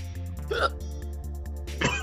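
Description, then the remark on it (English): Two short, sharp, moderately loud hiccups about a second apart, over a steady low background hum. “Do you got the hiccups?”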